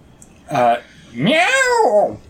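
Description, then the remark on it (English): A person does a vocal cat imitation: a short voiced mew followed by a longer, drawn-out meow that rises and falls in pitch, fairly loud. “Meow. Perfect.”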